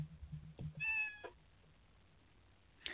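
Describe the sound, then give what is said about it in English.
A pet cat gives a single short, high-pitched meow, faint and almost chirp-like, set against a quiet background with a low rumble at the start. “No, it's actually a cat. It was a cat.”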